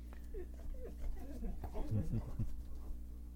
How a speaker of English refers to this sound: What are you crying about? The dog says it's about time for us to get done. We haven't been giving him any attention.